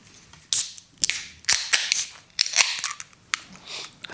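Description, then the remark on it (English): Beer cans cracking open, several sharp metallic pops in quick succession, each followed by a bright hiss of fizz. No one speaks. “Everybody prepare, glass in hand, can in their hand. Let's do it. Let's open her up.”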